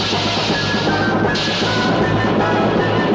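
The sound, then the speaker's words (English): A loud, steady roar of a missile gun firing after a countdown, a dense rushing blast that holds at full strength for about three seconds, with a low rumbling hum beneath it and no voices. “6, 5, 4, 3, 2, 1, fire. Missile gun.”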